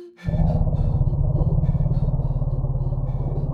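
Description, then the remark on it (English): An elephant's warning call for bees: a deep, throbbing rumble that starts abruptly and holds steady for about three seconds, loud and buzzy with a rapid pulsing texture and no voices. “You see, elephants are afraid of bees, and even have a specific warning call for bees.”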